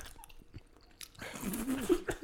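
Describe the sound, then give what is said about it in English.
Wet chewing of a tough mouthful, quiet at first and then growing louder and more effortful, with irregular crunchy bites and smacking. “I'm really having a hard time chewing this.”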